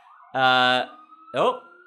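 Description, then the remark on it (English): An ambulance siren sounds in two loud bursts: a steady, buzzy held tone, a short gap, then a second blast whose pitch bends and slides. “Hospital truck. Oh, hospital truck.”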